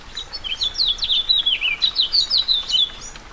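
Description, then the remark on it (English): A house finch sings a bright, rapid, jumbled warble that runs continuously for a few seconds over a faint, steady patter of light April rain in the Anza Borrego Desert, southeast California. “The sweet, jumbled notes of a house finch rise above the sound of the rain.”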